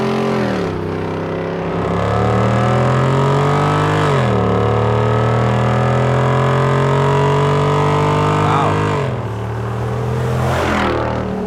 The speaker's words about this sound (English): Those are a Hemi. That's a car. What does that have to do with us? It'd be a Wrangler 392 with stock exhaust.